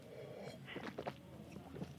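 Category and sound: food or drink, sipping red wine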